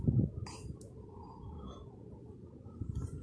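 A low, guttural burp opens with a loud, rough burst and trails off into a drawn-out rumbling croak, with a few faint clicks scattered over it.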